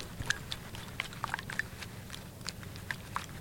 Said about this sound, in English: Supposedly, we can make it sound like gore and squidge, as they describe it, just by dipping rags and paper towels into the eggs and pulling them out again.